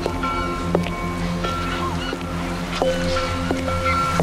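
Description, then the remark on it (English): A foghorn drones steadily throughout, a sustained low horn tone over the wash of the sea, with occasional faint knocks and creaks. No one speaks. “Foghorns in general. That would be splendid.”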